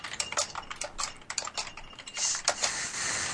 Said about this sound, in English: Who's typing on a fucking bed of glass? Oh, that was me. Jesus. I wish... you've seen my keyboard, the Microsoft, the curve.